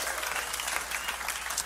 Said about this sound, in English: Can I get a hallelujah? Can I get some clapping or something up in there? Yeah.